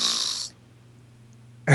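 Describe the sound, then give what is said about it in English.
A comic fart sound effect: a loud, raspy hiss gives way to a low, buzzing rumble that drones for about a second before another harsh burst cuts in. No voices. “It's the morning zoo, so you had to add a fart sound.”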